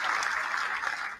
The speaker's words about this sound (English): Hold on, man. We need a motherfucking round of applause here.